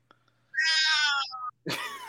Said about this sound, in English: My cat, man. Oh, put it down. It's annoying.